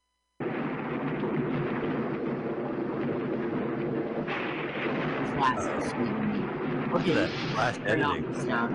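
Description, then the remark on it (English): A thunderstorm with deep, continuous rumbling thunder that rolls steadily and loudly throughout, with a few sharper crackling surges near the end and faint voices mixed in. “Yeah, you're just going to hear a thunderstorm”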